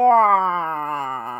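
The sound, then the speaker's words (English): A voice imitates a Wookiee-like howl: one sustained, moaning cry with rich harmonics that starts loud and slowly slides downward in pitch over about a second and a half. “More of a Wookiee sound.”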